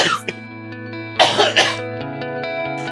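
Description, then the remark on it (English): A short burst of coughing, two or three rough, throaty hacks, set against a steady humming musical drone in the background. “Still got that cough.”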